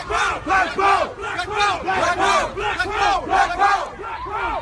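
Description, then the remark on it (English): A large crowd chants black power chants loudly in unison, many voices shouting short phrases in a steady, repeating rhythm that rises and falls without a break. “They start out with these black power chants.”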